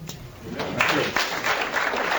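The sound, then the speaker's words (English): An audience claps in a steady, dense burst of applause lasting a couple of seconds, a crackly wash of many hands at moderate volume with no voices standing out. “And people are clapping like, wow.”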